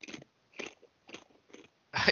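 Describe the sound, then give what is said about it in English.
Someone crunches on food, with five distinct bites in a steady rhythm, the last one the loudest and fullest. No talking. “Not without problems because the buddy is crunching over there, and he said, I had food.”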